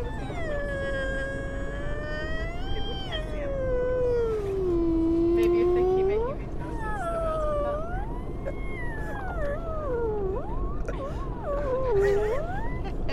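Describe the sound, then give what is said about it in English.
A human voice mimics whale song with long, sliding moans and warbling wails that swoop up and down in pitch, sustained for several seconds at a steady volume. “So there's two whales sitting in a bar, right? One whale turns to the other whale and he goes...”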